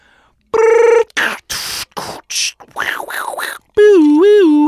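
Phone dialing and ringing effects as a call is placed to the master distiller of Few bourbon: a steady electronic tone, a quick run of short clicky bursts and chirps, then a loud warbling ring tone, with no one talking.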